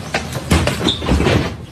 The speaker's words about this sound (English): Tried to jump into the train last minute and smashed his entire face and head into the hood of the door. And fell to the ground.